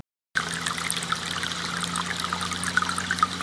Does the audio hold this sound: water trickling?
yes